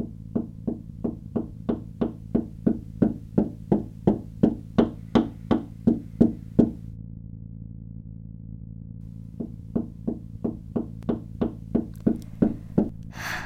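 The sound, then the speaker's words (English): A rapid, steady series of sharp taps on a motel window by someone right outside it, a long run that stops for a few seconds, then resumes, over a low constant hum. “I'm interrupted with tapping on my motel window.”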